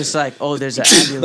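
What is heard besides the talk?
sneeze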